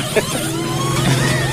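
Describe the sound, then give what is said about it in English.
A car engine with a suspected failing fuel pump runs with a steady, low droning hum and a faint thin whine above it, holding fairly even for a second and a half with no voices. “To me, it sounds like a fuel pump problem.”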